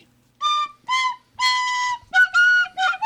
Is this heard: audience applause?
no